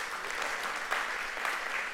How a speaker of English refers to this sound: If you believe that today, would you give the Lord a hand clap and say, yay, God.